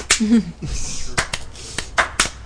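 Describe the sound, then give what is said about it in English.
A handful of sharp hand claps land at an unhurried, slightly uneven pace, following a brief murmur of voice at the start. “Slow clap.”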